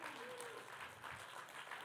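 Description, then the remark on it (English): An audience applauds together in a dense, steady wash of clapping lasting a couple of seconds, moderately loud, with faint voices mixed in beneath the claps. “Clap for your platform.”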